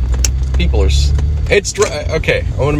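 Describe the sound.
A steady low road rumble fills the inside of a moving car, constant throughout, with a person talking over the engine drone.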